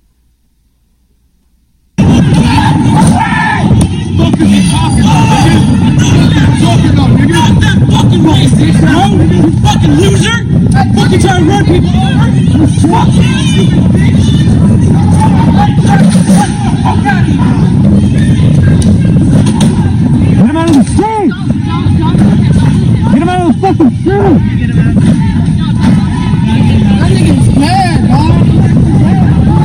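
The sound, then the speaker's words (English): A loud, chaotic crowd of rioters on a street in Portland, many voices shouting and clamoring over one another as they beat a man who had crashed his truck, continuous after a brief silence, with a steady engine-like rumble of vehicles underneath. “Portland rioters viciously beat man unconscious after he crashes his truck.”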